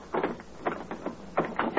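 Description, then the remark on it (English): A homeowner in Wistful Vista checks his front door lock, which rattles and clicks in a series of short metallic bursts, several quick jiggles spaced out over a couple of seconds, moderately loud with no voices. “Here's one, for instance, giving his front door lock a looking over right now.”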